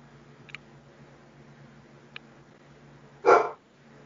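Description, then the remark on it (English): A single sharp dog bark breaks a quiet background with a low steady hum, preceded by two faint, brief squeaky chirps. “Poor doggy. Bye bye, doggy.”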